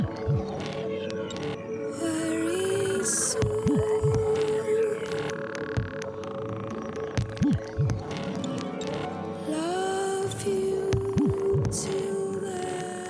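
Eerie, creepy music built on slow, deep throbbing wub pulses that recur every couple of seconds beneath steady droning tones and occasional sliding higher notes, with no voices.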